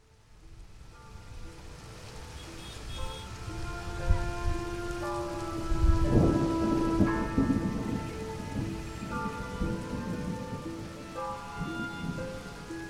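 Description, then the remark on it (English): Steady heavy rain pours down while a deep roll of thunder swells midway and fades, with sustained low musical tones droning beneath the storm and no voices. “Striding through swollen puddles in a dismal downpour,”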